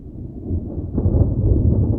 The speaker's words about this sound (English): For an instant it flickered like a fluorescent light struggling to come on, and then, with a deep roll of thunder, it disappeared.